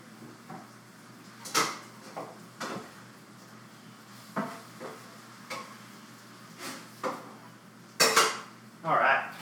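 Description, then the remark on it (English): A metal utensil clinks and scrapes against a pan on a stove while turning chicken, in irregular bursts, about a dozen sharp clatters over a low background hiss, with a louder flurry near the end. No one speaks. “I've got some chicken on the stove. I need to turn it.”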